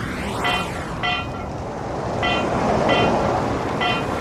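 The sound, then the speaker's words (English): A car rolls over a broken manhole cover outside a home on Thornside Gardens, which clanks sharply with a ringing metallic tone five times at uneven intervals over a steady rush of traffic and wind noise; it happens at least 50 times a day. “All I want to do is report a broken manhole cover outside my home.”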